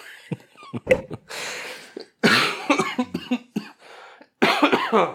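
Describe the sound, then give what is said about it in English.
A person who is getting over a cold coughs repeatedly, harsh loud bursts grouped into three fits with short quiet gaps between them, and no talking. “I just want to say right off the bat that I'm getting over a cold, and I will be coughing.”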